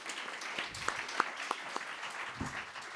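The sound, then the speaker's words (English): A crowd applauds steadily, a dense wash of clapping with a few sharper individual claps standing out above the steady patter. “But can I ask you to give a big round of applause to”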